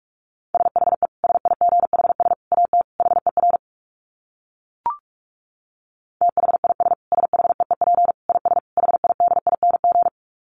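Rapid Morse code at about 45 words per minute: a steady mid-pitched tone keyed on and off in fast dits and dahs, two long runs separated by a pause with a single short blip.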